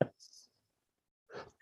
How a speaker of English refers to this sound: Anyway, I was blowing my nose. Did you hear me blow my nose? I heard a scuffle.